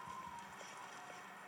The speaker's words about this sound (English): Horses. It's a battle.